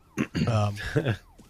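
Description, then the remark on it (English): A faint, wailing police siren rises and falls in a video game as police arrive after a house alarm goes off during a break-in, while a voice talks loudly over it. “Oh, actually, here come the La Policia.”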